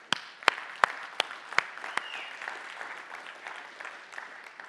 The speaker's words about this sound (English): And if you agree, can we applaud our women right now?